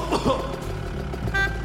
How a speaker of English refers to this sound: It looked at me. That weird green hover cycle looked at me, and it honked, and I don't even know what it's trying to say.